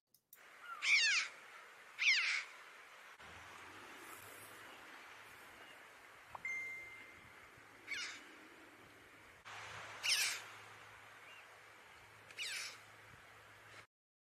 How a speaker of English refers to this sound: There's a lot of these up in Donegal, on the coast in Donegal. Slieve League is a place you'll see crows. Not crows, choughs. So here's a chough.